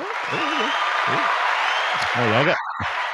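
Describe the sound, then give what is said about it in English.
A canned applause sound effect played by a presenter on stage: a dense, steady wash of clapping with a few wavering voices or whoops riding over it, cutting out abruptly near the end. “I also have my own applause in case yours doesn't work.”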